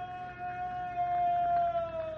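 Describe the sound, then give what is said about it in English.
A scream coming from among rocks beyond a fire area holds one long, sustained high, wailing pitch that sags slightly toward the end, heard over a steady background hum with no talking. “There it is again. Was a scream.”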